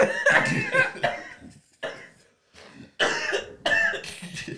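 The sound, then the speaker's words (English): A person coughs hard and repeatedly in several raspy bursts separated by short pauses, with no talking in between. “As soon as you said that shit, you started coughing, bro.”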